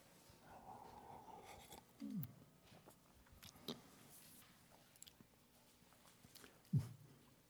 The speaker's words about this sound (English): As you turn to John 15, 5, I'm going to have a sip of coffee because my throat's getting dry.